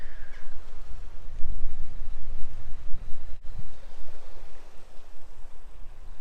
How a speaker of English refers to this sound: And I'm sure you can hear that beautiful sound of the water just lapping on the rocks in front of me.